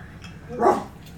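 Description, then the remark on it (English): An upset puppy lets out one short, whiny bark, moderately loud, with a faint background hiss before and after and no talking. “Oh, I'm sorry, puppy. Did I upset you?”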